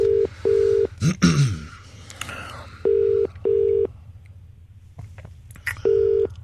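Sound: telephone call dialing out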